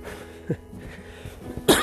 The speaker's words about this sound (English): I am not going to apologise every time. This is going to be annoying. Keep on repeating myself, but sorry about this cough.